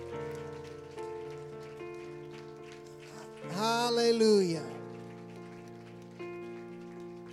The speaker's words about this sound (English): Let's just seal it with a hand clap of praise.